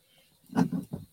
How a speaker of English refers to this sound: Well, those owls are chattering tonight.